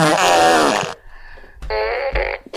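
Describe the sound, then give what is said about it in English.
Two loud, buzzy fart noises from a toy fart gun, the first long and drawn out, then a brief pause before a second sputtering blast, prominent with no talking over them. “So, and that's coming from someone with a fart gun.”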